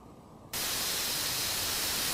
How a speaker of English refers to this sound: Static. Yeah, just TV static.